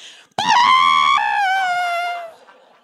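A badly played trumpet note, played by a man asked to play a note during a church gathering, blares out abruptly, a strained, shrill single tone that wavers, sags lower partway through and trails off after about two seconds, with no talking.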